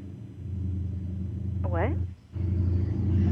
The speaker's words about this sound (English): What? Oh, it's a motorcycle. Did you hear it? You hear it? Yes, I do.